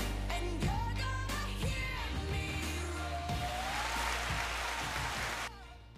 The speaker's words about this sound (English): That applause was for my dance party, right? It was abrupt.